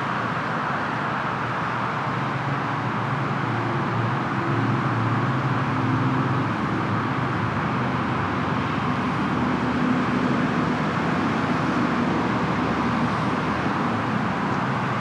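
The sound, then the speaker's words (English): A steady roar of road traffic fills the whole stretch, cars streaming past without pause, with a low engine hum underneath and no voices. “Too many cars, not enough squirrels.”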